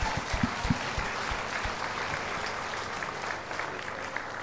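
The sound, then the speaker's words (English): A group at a Christian gathering, having put down their juice cups, claps together in a steady, dense wash of applause, with a few sharper individual claps standing out early on before the clapping settles into an even patter. “But as soon as you get rid of your cup, then you can clap, all right?”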